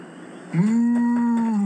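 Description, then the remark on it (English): A person imitates a cow with one long, steady moo that starts abruptly partway in and holds a low, sustained tone to the end, fairly loud. “Moo. Come on. You can do better than that.”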